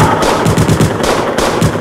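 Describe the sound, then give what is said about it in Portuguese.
Rapid bursts of rifle fire, with tracer bullets lighting up the sky, crackle in quick succession, a dense, loud stream of overlapping shots with no voices, continuous throughout. “Tiros de fuzil iluminam o céu.”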